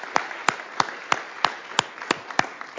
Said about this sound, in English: I think that ends our session today. Let's give another round of applause for our panel. Thank you very much for joining us.